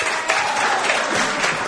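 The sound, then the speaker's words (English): A crowd claps in a steady, dense round of applause for Coach Sean Smith, loud and continuous with no one speaking over it. “Let me hear a round of applause for Sean Smith.”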